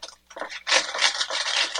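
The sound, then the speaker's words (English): A papery rasp and crinkle as parchment paper is drawn off a roll to measure off a small piece for microwave peanut butter fudge, starting with a few short scratchy bursts, then a louder, continuous rustling pull lasting over a second. No one speaks. “What I'm doing is measuring off a little bit of parchment paper.”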